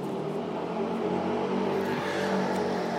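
A small Vespa moped carrying two people in Madrid stops right in front, its engine a steady buzzing idle with faint revving, loud and continuous for a few seconds with no talking.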